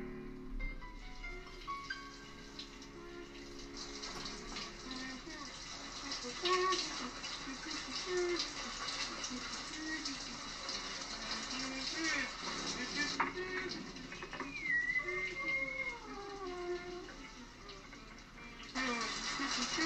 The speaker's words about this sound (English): She is humming an impossibly annoying tune in the shower. I'm actually going to stop the recording now so I can sample this tune.